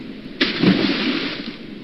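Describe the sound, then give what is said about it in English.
Crab traps thrown from a dock hit the water with one sudden, loud splash, followed by a churning, bubbling wash that slowly fades. No one speaks. “Since we're at the dock, let's throw those crab traps into the water and see what we get.”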